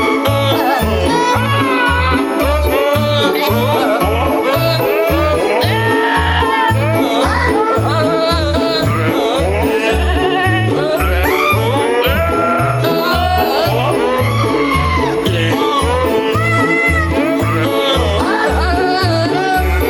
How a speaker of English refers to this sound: If goats singing Christmas carols does not get you in the spirit, nothing else will. Oh, those were goats? I thought you had a recording of us trying to get our kids ready for church when they were younger.